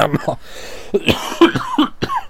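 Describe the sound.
A loud cough in several harsh bursts, with some throat clearing mixed in and voiced sounds between the bursts.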